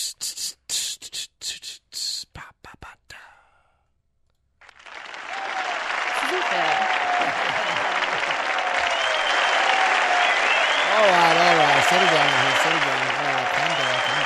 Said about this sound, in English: You never give me an applause after my intros. You can't give yourself an applause. I didn't give that applause. Those are people in the studio who appreciated that intro and just put their hands together.